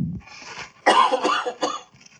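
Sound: cough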